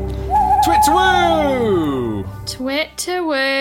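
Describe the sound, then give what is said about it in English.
A human voice imitates an owl's hoot: a long, loud call that rises and then slides down, followed by a shorter, wavering hoot. “Twit-to-woo! A twit-to-woo to you all.”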